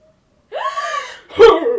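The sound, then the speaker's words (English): Two voices imitate the characters Jamie and Bron gasping for breath as they come out of a body of water, one after the other: a long, drawn-in, rising gasp followed immediately by a louder, harsher gasp, with no words. “Okay, so we open with Jamie and Bron coming out of the body of water, gasping for breath.”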